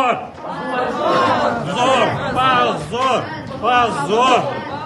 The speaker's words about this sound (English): Memorial's supporters in the courtroom responded with shouts of shame.